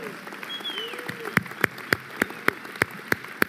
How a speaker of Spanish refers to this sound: Un fuerte, fuerte aplauso.